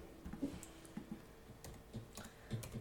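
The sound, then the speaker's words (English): Someone types on a computer keyboard while rolling dice on the computer, producing a quiet, irregular run of soft key clicks with short pauses between strokes, with no voices. “I'm rolling on a computer.”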